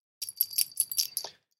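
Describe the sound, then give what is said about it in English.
A small bell on the collar of a cat named Yogi jingles in a quick, uneven flurry of bright, high-pitched metallic tinkles lasting about a second, with no voices present. “It's the sound on the bell of the collar of my cat, Yogi.”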